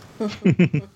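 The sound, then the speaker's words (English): A quick run of small, voiced sneezes from a person, three or four sharp bursts in rapid succession, fairly loud, with no talking around them. “Bless you, whoever's sneezing.”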